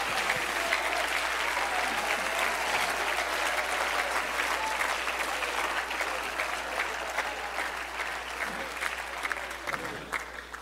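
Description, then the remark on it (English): A large group claps steadily and continuously, a dense wash of applause filling the space for about ten seconds at an even, fairly loud level with no individual claps standing out. “Oh, clap your hands if you're thankful for that.”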